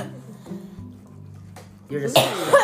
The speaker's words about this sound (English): You just coughed in my ribs. That is disgusting.